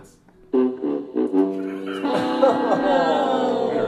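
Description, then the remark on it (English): An air horn sound effect for a fumble blares loudly: a few short, choppy blasts followed by a long, sustained, brassy honk that holds steady to the end, with no talking. “I do have a fumble air horn.”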